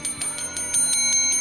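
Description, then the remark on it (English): A bell rings in a fast, steady rattle of about eight bright metallic strikes, each leaving a high, sustained shimmer, fairly loud with no voices. “You know, this thing's not ringing so well anymore.”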